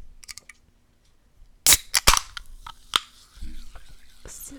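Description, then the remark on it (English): Ice rattling in a cold can of Dr. Pepper: a handful of sharp, bright clinks and crackles in quick succession, then a softer rustling tail, with quiet stretches around them. “Oh, do y'all hear that? Ice.”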